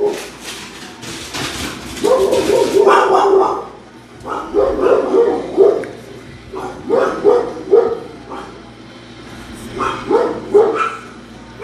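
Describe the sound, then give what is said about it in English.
Several household dogs bark repeatedly in uneven bursts, loud, with a few yips mixed in, over a low background hum. “Sorry, my dogs.”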